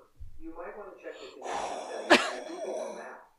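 Heavy breathing with raspy, breathy exhales building over a few seconds, broken by one sharp gasp-like burst in the middle.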